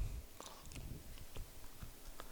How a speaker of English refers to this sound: What do we think? He's chewing it a lot. That's pomegranate.